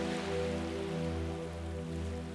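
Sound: gentle ocean waves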